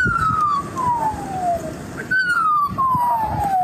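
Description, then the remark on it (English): An Australian magpie mimics an emergency siren with two long, clear whistled wails that glide steadily downward in pitch, loud over a constant low rumbling background. “So that's not an actual siren. That's an Australian magpie, a type of bird that mimics sound, and right now, it's not hearing much else to mimic.”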